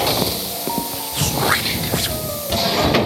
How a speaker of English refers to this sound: We're at the door. Here, I'll press the button that opens the door.